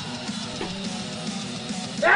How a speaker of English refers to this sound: Bless you. God bless you, my child,